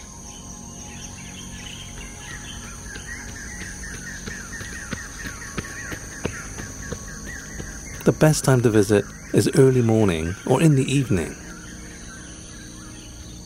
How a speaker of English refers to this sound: You've been hearing the Rail Corridor, an oasis of sonic bliss. Here is the Bukit Timah Railway Station